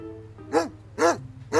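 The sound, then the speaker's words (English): A junkyard dog barks three times in a steady, evenly spaced rhythm, each bark loud and sharp, with a faint low hum underneath between barks. “How's our favorite junkyard dog doing?”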